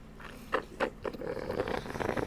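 Wet mouth sounds of someone sipping Monster energy drink or ginger ale from a can: a few short slurps, then a steadier stretch of gulping and fizzy lip noise, fairly quiet with no talking.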